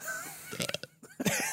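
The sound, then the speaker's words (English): A small, short burp: a couple of quick throaty pulses followed by a brief second gulp, fairly quiet against a faint background hum. “Oh, I'm gonna burp.”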